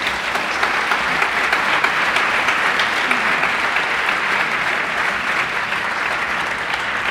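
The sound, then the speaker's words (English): Steady, dense clapping from an audience fills the whole stretch, a loud, even wash of many hands with no pauses and no voices, applauding a segment reviewing the film Black Mass. “I'm not sure we've ever gotten, like, per segment applause before.”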